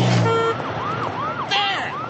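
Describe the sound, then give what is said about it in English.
A wailing emergency siren, used as a sound effect to set a story in the city, sweeps up and down in repeated arcs over a steady bed of city traffic rumble, loud and continuous, with a brief horn-like tone near the start. “Simple sound effect, and you've got the city.”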